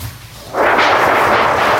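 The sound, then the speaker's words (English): After a quiet moment, a thunder clap in a storm with lightning bursts in suddenly and loudly, then holds as a broad, rolling roar that keeps going without fading for over a second. No one speaks. “Lightning flashed.”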